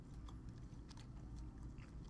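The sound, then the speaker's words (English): Steady chewing of lime Skittles candy, with soft wet smacks and small crunchy clicks repeating quickly throughout. It is fairly quiet, and no one speaks. “Inaudible chewing. Right. Maybe audible chewing.”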